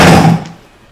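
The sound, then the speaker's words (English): A chair scrapes and creaks loudly for about half a second, a rough, slightly tonal groan that quickly fades into quiet room noise. No one speaks. “The chair makes that noise.”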